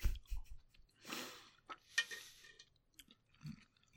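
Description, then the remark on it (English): Wet, squelchy chewing of spaghetti in an irregular rhythm, with soft smacks and a few sharper clicks of utensils, moderately loud with no talking. “So I promise I'm almost done with this spaghetti.”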